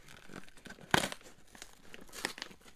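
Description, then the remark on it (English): A sealed Amazon cardboard box, its tape uncut, is ripped open during an unboxing in a series of rough tearing and crinkling bursts, with one loud, sharp rip about a second in and scattered smaller tears after it. “Wow, you are just Hulk smashing that box.”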